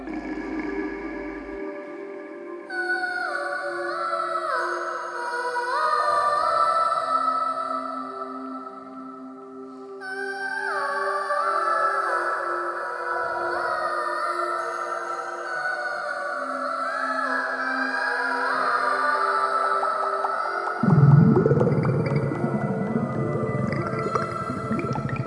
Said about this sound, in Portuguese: Olhem para a esquerda agora. Isso é um peixe-boi arrotador. Eles se comunicam usando arrotos, os mais altos de todo o oceano.